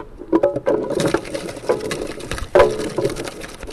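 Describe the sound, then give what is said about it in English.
A cider press on a farm works on apples, giving a steady mechanical grinding and creaking with a few sharper clunks scattered through, and no voices. “And now it's on to the cider press.”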